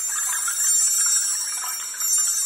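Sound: wind chimes ringing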